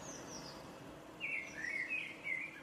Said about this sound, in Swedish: Koltrast är min fågel, för den satt där och jäckade då. Hur låter koltrasten? Jag vet inte, men den ska sjunga väldigt vackert. De är kolsvarta och har gul näbb.